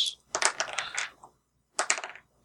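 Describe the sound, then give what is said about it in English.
A ten-sided die and a six-sided die, rolled for damage in a tabletop game, rattle and clatter across a hard surface in a quick burst of sharp clicks, then a brief pause before a second, shorter clatter. No talking. “Where are my dice? 1d10 plus 1d6.”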